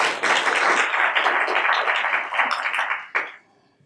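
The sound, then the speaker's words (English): A crowd applauds the evening's panel of reporters steadily for about three seconds, a dense wash of many clapping hands, then the clapping dies away quickly into near silence. “Let's have a round of applause for our panel tonight.”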